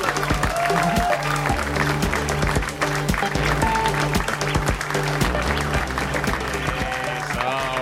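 Loud, steady audience applause runs throughout, mixed with upbeat walk-on music that has a strong beat and sustained low tones, with no break in the clapping.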